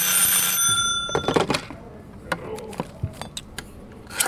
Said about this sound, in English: Yeah, it's an old dial phone.